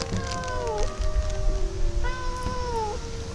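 Two drawn-out cat meows, each about a second long with a falling, wavering pitch, over a steady hiss of background noise, while the cats have found a thick plastic bag.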